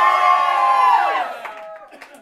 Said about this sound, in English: So, are we ready? Yes. Yell and scream, I want to hear it loud. Yes.